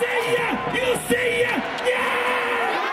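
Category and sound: crowd, baseball stadium crowd cheering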